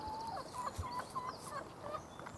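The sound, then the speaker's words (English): Chickens cluck in a steady run of short, repeated calls in hot weather, over a soft background hiss with no one talking. “And one of them's broody and is spending a lot of time in there.”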